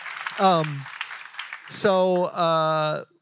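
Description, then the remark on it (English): A crowd practicing its applause claps in a brief, scattered patter, with loud sustained whoops and cheering voices rising over it before it fades out. “We can clap.”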